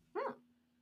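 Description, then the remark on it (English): A voice imitates a dog gagging on a big bite of something: a single short, throaty, bark-like gulp, fairly loud, followed by quiet with a faint steady hum. “Like, you know, like when a dog like gets like a big bite of something and they do that, like that kind of thing.”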